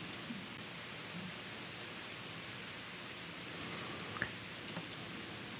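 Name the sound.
rain falling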